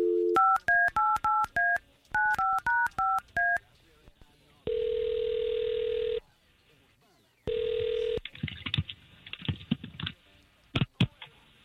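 A quick run of touch-tone keypad beeps in two bursts dials a number for an outgoing telephone call, then a long steady ringing tone and a shorter second ring follow, ending in faint line clicks.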